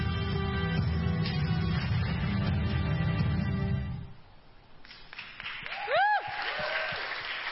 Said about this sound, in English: So, before I say a few more things, thank you very much for giving a round of applause for that video.